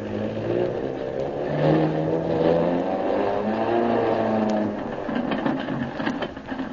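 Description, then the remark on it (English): A loud, steady aircraft engine drones and revs at the Shanghai airport while the plane is checked over, its pitch rising and falling slightly, filling an airfield ambience with no voices. “Meanwhile, at the Shanghai airport, Kolo helps Shanghai Lil as she checks over her plane.”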